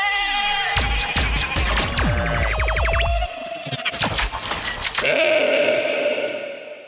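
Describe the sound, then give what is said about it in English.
Goats bleat repeatedly over a busy electronic segment theme jingle full of sweeping zaps and laser-like tones, the bleats loud, layered into the music for several seconds. “I think it's time for the rapid fire goats.”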